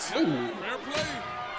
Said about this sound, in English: Oh, that was a good chair shot. Ooh.